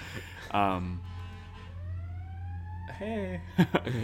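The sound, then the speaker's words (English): Emergency sirens outside in the city wail on without stopping, a slow rising tone, faint beneath brief bursts of voices and a steady low hum. “Yeah, I mean, first of all, my city must be burning down because these sirens have not stopped.”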